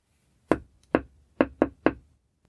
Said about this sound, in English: Then she marched straight to her neighbor's house and knocked on the door.